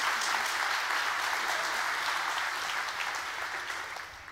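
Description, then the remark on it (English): A crowd applauds a woman steadily for about four seconds, a dense wash of many hands clapping at once that tapers off slightly toward the end. “So let's go ahead and give her another good hand clap”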